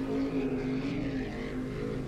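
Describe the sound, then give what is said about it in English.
A speedboat engine buzzes down a canal in a steady, continuous drone with a strong low hum and rough harmonics, holding fairly loud and even throughout, with no voices. “But just as Harry was contemplating his next move, he heard a buzzing noise coming from further down the canal.”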